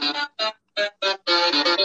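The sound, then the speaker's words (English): A brief, ominous zombies-mode music cue from the video game Black Ops 2 Zombies: a few short, bright stabs separated by pauses, then a sustained run of loud, rich chords, with no one talking. “But sorry, do you it was the music for Black Ops 2 Zombies.”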